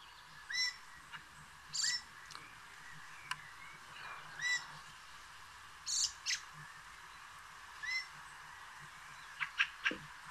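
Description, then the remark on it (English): A fieldfare, a passerine bird of the thrush family, gives harsh, chattering calls in short bursts, repeated irregularly every second or two, ending with a quick cluster of sharper notes, heard clearly over faint background hiss. “I think Fieldfare is the bird.”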